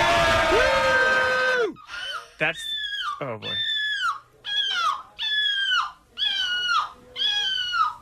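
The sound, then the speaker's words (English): People in a seagull impression competition imitate seagull calls into a microphone with a string of loud, high, wavering squawks that rise and fall in repeated bursts, alongside crowd noise and a bit of speech. “So I turn these way down so they're not too annoying, but these are people making this noise. How crazy is that? They sound just like seagulls.”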